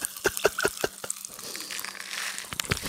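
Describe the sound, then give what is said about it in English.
A snack pack being shaken and poured, rattling like a rain stick: a few sharp crackly clicks, then a steady, dense rustle of tumbling bits, with no voices. “I sound like a rain stick.”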